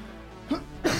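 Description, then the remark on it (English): A person sneezes: a brief, breathy first burst followed by a sharper, louder explosive second one, with no talking around it. “Bless you.”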